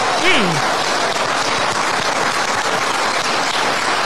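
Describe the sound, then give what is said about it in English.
Steady audience applause fills the whole stretch, a dense crackle of many hands clapping at even loudness, with a brief voiced shout or cheer rising near the start. “And that they clap for.”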